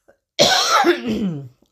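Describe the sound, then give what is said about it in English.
A single harsh, rasping cough burst leads straight into a gravelly throat clearing, loud, lasting just over a second with no talking around it. “You've just full of coughs and all that the night.”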